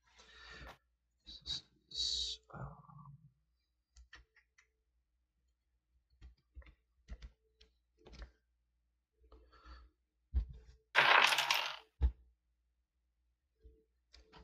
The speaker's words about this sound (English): My dice goblin just went off. Who was dropping that wonderful load? Those are my. I just have a bunch of the resin dice that I printed, just that sit right next to my mouse, so it's easy to grab them and just shuffle them and roll them.